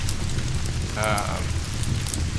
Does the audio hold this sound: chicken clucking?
no